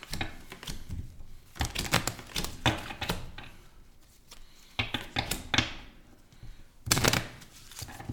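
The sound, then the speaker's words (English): A pile of monster cards for a game being shuffled, a series of crisp riffling bursts and soft slaps repeating irregularly over several seconds, with no talking. “Shuffle all the monsters right now.”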